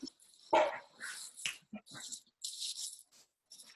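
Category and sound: animal, dog barking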